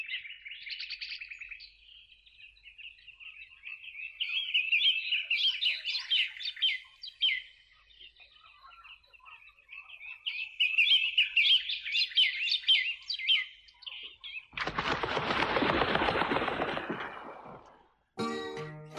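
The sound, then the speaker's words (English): Birds chirp and twitter busily in a dense, continuous chorus, then a loud rushing flutter of wings bursts in near the end before a few final chirps, from the start of a song version made for the World Wildlife Fund. “And then they did the version for the World Wildlife Fund, and they have the flying birds at the beginning and at the end.”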